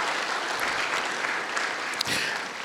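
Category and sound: crowd, audience round of applause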